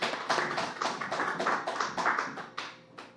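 A round of applause from a small group at a recovery group meeting, a dense patter of overlapping hand claps for a speaker that stays fairly steady and moderately loud before thinning out toward the end.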